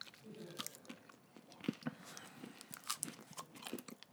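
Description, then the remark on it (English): Crisp crunching of someone biting into a Crunch Bar, a crunchy chocolate bar with rice in it, then several seconds of steady chewing with small crackly snaps, no one speaking. “I'm going to take a bite into this Crunch Bar.”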